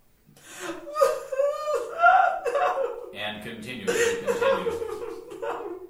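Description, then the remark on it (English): Wordless screams and yelps from voices that wail and cry out with sliding, wavering pitch, going on steadily for several seconds, with a lower voice joining in partway through. “Screams and yelps continue.”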